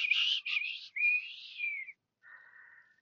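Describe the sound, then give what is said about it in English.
A shrill, warbling whistle given by a woman sounds loud on its own, sliding in pitch for about two seconds, then a short pause and a fainter, breathier whistle trailing off. “And you hear her give out this whistle that's very particular.”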